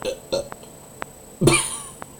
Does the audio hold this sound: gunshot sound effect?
no